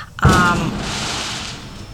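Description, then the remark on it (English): A single sharp firework bang goes off outdoors in a neighborhood on July 5th, fairly loud, followed by a rumbling echo that slowly fades over the next second and a half. “By the way, if you hear fireworks, it is July 5th, and motherfuckers in the hood don't know how to act with fireworks.”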